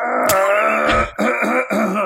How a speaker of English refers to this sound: I think he's coughing up some flesh. I feel like he's clearing his throat.